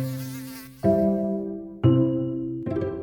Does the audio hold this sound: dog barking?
no